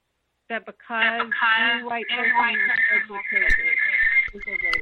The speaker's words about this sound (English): I guess you're on speakerphone, maybe? Maybe if you could take it off speakerphone, that way it won't echo. We could try it that way. Who's on speakerphone?